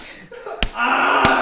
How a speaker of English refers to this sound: I slapped … right in his butthole